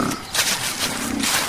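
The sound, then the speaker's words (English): A buck deer, at least an 8-pointer, calls with a few rough, breathy grunts in quick succession, fairly loud, with no one talking over it. “Wow, he's a beaut. At least an 8-pointer.”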